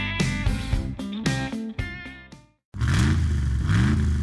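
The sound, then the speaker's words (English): A Ram pickup truck's Hemi V8 engine revs hard in several quick, loud bursts, cuts out briefly, then roars back steadily with rising throttle sweeps, with no voices. “With unrivaled Hemi V8 power and a max brake towing capacity of up to 4.5 tonnes.”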